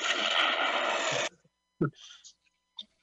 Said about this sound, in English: Wait, now listen, I've lit my own fart. Way too big an explosion for lighting your fart.